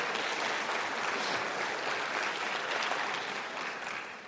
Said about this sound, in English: So on behalf of both the center and the class, I welcome you to this 50th reunion event, and a special welcome to all Class of 68 members. So you can give yourselves an applause.